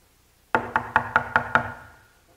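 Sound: knocking on a door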